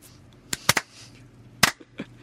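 A handful of sharp, crisp hand claps, about six in all, come at an uneven, unhurried pace with short pauses between them, standing alone against a quiet background.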